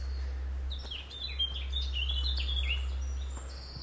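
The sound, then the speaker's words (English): Several birds sing at once in woodland, a busy overlapping chorus of high chirps and trilling phrases that runs throughout, set against a steady low outdoor rumble. “Anyone know their birds?”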